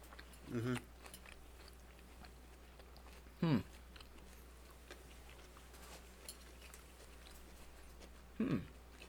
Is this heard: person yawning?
no